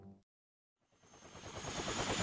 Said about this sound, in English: Now, our adventurers race to Japan aboard the Doctor's supercharged Helio Chopper to stop General Isayama from giving the Emperor of Japan de facto power over all of Asia.